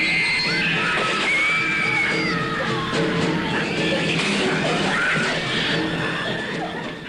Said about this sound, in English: Rats, everyone agrees, are the enemy, as you can hear in this trailer from Deadly Eyes, a 1982 Canadian horror film based on the James Herbert novel The Rats, in which deadly rats consume Toronto residents in the dead of night.